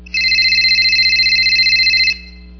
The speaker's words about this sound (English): And the first one is the phone is ringing.